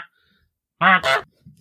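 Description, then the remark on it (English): A person imitates a goose with two loud, nasal honks in quick succession, after a moment of near silence. “Flying like your goose thing you were doing earlier on.”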